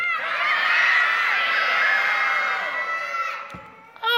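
A group of voices shouts together in one loud, sustained burst lasting a few seconds, close and energetic, then fades out, followed by a brief thump and quiet.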